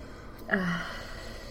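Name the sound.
sniffing wine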